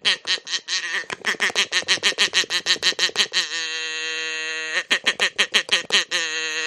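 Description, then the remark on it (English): A duck call blown in fast, loud staccato quacks, then one long held buzzy note before a final burst of rapid quacks. No talking. “The duck call thing is here.”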